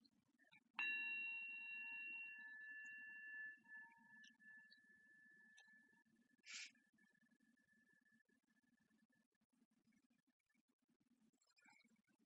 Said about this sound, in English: All right, so let's start off. The little bell ring.